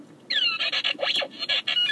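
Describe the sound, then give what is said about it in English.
A mobile phone rings with a loud, chirpy electronic ringtone: rapid high whistles and warbling tones that sweep up and down, broken by short gaps, with no voices. “Sorry, I turned my phone off.”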